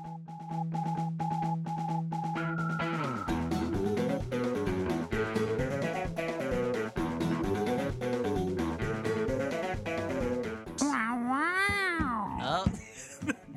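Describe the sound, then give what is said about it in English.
A person imitates a cat, producing a long, continuous run of wavering, drawn-out meows, ending in a few high swooping yowls. “No, I wanted to do the cat thing.”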